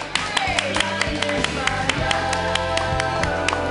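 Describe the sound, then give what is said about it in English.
A comedy show audience claps wildly to welcome comedian Yuri Kagan, a dense, continuous wash of hand claps with sharp individual smacks, loud and sustained for several seconds, with steady tonal sound running beneath. “Clap wildly for Yuri Kagan.”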